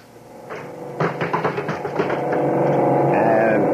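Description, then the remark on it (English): A quick run of sharp button-like clicks gives way to a steady electronic intercom buzz that swells and holds, with a faint whining tone over it at the end, as the intercom buzzes Bismarck. “I'll buzz Bismarck.”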